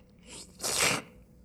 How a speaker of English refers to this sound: You are sipping it in E-flat.